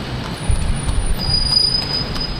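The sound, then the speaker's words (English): Busy street ambience on a main street of Dakar, Senegal, where horses pull wooden carts alongside cars: a steady low traffic rumble and thin, high squealing tones like turning wheels, holding constant throughout with no voices. The air is thick with sand. “Horses pull wooden carts alongside cars on the main streets of Dakar, the capital of Senegal.”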